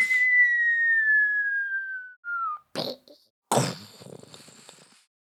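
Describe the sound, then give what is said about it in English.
A person whistles one long, steadily falling note lasting about two and a half seconds as a live mouth-made sound effect, then makes two short, rough, noisy bursts with the mouth, like an imitated crash or splat. “just has a good whistle”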